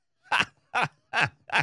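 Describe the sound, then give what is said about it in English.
Someone gives four short, raspy throat-clearing coughs in a steady, evenly spaced rhythm, each a brief breathy burst of moderate loudness with no talking in between. “It's not a good time to be a smoker these days if you've got that little trying to clear your throat with a little cough and everybody fucking freaks out around you.”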